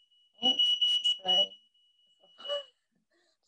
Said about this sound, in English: The annual fire alarm that goes off.